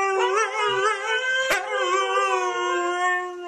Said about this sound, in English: But huskies do sing. It's a howling. It's a singing.